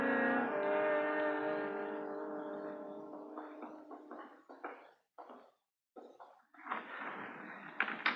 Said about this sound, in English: There. I got the trap door open.